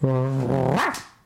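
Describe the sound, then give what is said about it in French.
A man imitates a dog with one drawn-out, growly bark that swells, bends sharply upward in pitch near the end, and breaks off in a breathy burst. It's loud, with no other sounds. “C'est pas un chien, c'est le gars.”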